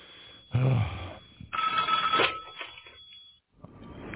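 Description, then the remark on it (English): A red telephone rings in a couple of bright, buzzy bursts, then trails off into softer, fainter ringing. The sound is thin and band-limited, as if heard through a small speaker. “Uh-oh, the red phone's ringing.”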